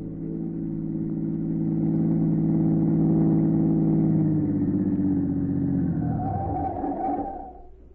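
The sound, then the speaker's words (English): A black car with its curtains drawn hums steadily outside a church, then its engine pitch drops as it slows, pulls to the curb and rolls to a stop, the engine noise fading out at the end. “A minute or two later, a black car, its curtains drawn, pulled to the curb.”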